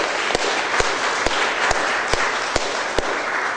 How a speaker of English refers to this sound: I want to say really quickly, I'd be remiss if I didn't acknowledge the young people that have been working on this tobacco density ordinance since 2008 that are in the room. I'd just like to give them a round of applause.